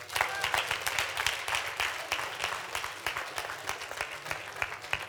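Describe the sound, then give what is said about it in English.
An audience claps for themselves steadily for about five seconds, a dense, even patter of many hands with sharper individual claps popping out, faint voices murmuring underneath. “If that's your intention and desperate, why don't you clap for yourself?”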